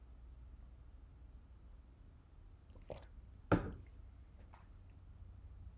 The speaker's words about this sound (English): I'm going to take another sip of tea.